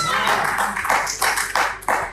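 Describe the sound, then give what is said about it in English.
Many hands clapping together in a loose, steady rhythm, a dense crowd applause with repeated bright smacks swelling every half second or so. “No, you need to clap.”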